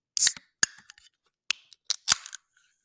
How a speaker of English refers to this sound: So when you open the can, you see the bubbles kind of forming on the tab that's been popped.